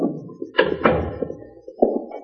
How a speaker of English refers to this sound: He's coming back, boss. He's opening the door.